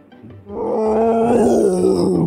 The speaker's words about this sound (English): This is horrific. Sort of roaring through the snow. This bear is 15 feet. If it were to stand on its rear legs, it would be 15 feet tall. Squat, it's a little bit shorter than that, but it's freaking huge, man. Huge.